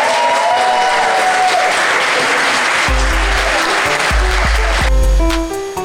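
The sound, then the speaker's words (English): An audience breaks into loud, sustained clapping with some cheering mixed in, a dense steady wash of applause. Partway through, deep pulsing music tones join beneath it. “Please clap and cheer, and that'll be the end.”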